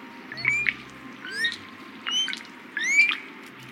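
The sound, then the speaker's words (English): Several common ravens in scraggly pines at the Grand Canyon call back and forth in a run of four harsh, bursting croaks with squeaky overtones. The croaks are fairly loud over a low, steady background rumble. No one speaks. “Common ravens call and squabble from the branches of scraggly pines.”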